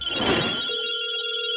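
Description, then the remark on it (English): A telephone rings once, a short bright electronic burst that settles into a steady sustained tone, clear with no one talking. “Let's go ahead and see what's going on the phones.”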